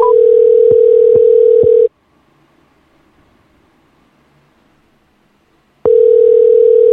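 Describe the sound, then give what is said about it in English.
A telephone ringback tone: a steady electronic purr rings for about two seconds, falls silent for roughly four, then starts again, with a few soft clicks during the first ring. No voices. “Hopefully he'll answer the phone.”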